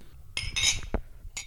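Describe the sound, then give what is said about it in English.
Glasses clink together in a birthday toast in Eugene, Oregon: a few bright, ringing taps in quick succession with a short pause before a final clink, and no voices. “So this cheers. That's the cheers.”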